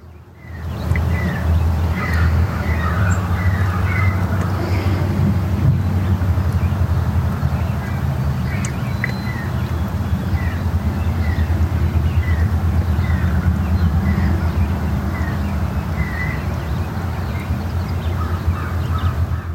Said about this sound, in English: this red-eyed vireo just sings non-stop. Here I am, here I am, here I am.